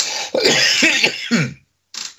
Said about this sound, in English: Please excuse me, I'll just clear my throat.